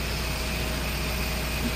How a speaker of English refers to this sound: You have a noisy bathroom? Yeah, it's right next to the generator for the entire building.